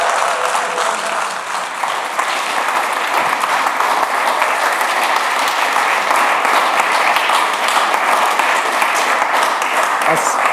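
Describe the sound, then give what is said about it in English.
An audience at Life Church in Peterborough, on their feet, applauds steadily for about ten seconds to welcome a preacher, a dense wash of clapping with scattered cheers and whoops rising above it, loud and sustained throughout without pause. “I wonder if you could just be on your feet for a moment and give him a massive Peterborough cheer as he comes to preach to us.”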